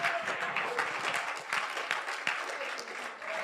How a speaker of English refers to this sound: Why don't you clap your hands and magnify the Lord?